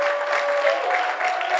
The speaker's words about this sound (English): God bless you. Clap for yourself.